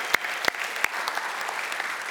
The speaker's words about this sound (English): So if you will rejoice in her decision and his family's decision, will you just say amen and clap? Amen.